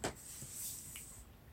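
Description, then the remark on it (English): A door clicks open with a sharp, quiet latch click, followed by a thin, high squeal that lingers for about a second before fading; no voices. “Door clicks open.”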